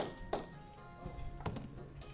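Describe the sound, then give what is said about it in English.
Several faint, irregular clicks and knocks of dice tumbling and settling on a table as they are rolled during a tabletop game, with a sharper clack near the start and softer taps afterward. “Oh my god, these dice tonight!”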